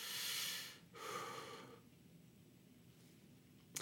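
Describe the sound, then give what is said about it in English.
Deep breathing: a long, airy inhale followed by a slower exhale, then near silence. No one speaks. “Oh, keep breathing now.”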